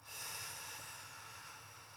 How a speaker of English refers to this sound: I want to invite you to close your eyes and focus on your breathing. Take a deep breath in.